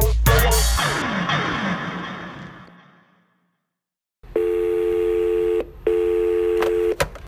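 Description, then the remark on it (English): A clattering, ringing jolt fades out, then after a brief silence come steady electronic telephone tones from a phone booth in two long bursts separated by a short gap, clear with no voices. “And I was told to come to this very location and use this very phone.”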